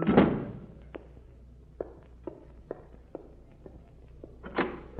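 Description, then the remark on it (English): A door bumps open with a heavy thud, followed by a few scattered footsteps across the room, and then the door shuts with another solid thud. No one speaks. “Yes, but I think that's the door.”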